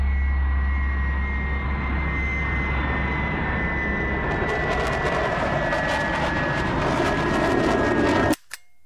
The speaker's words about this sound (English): There's a plane coming down much too fast. The small plane crashed in rural West Wales.